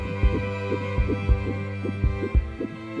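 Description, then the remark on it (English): A steady, thumping heartbeat of another person, with paired low beats repeating about every half second, resonant over a low droning hum, with no voices. “The heartbeat of another.”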